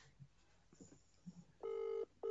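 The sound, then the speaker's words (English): An outgoing phone call's ringing tone, calling an uncle: a steady electronic burst lasting about half a second, then a brief pause and a second burst starting, preceded by faint room murmurs. “Should we just phone him? Shall I phone him?”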